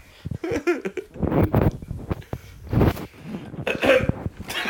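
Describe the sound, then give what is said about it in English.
Someone clears their throat in a run of raspy, guttural bursts that spread over several seconds, with no talking around them. “I can't just clear your throat.”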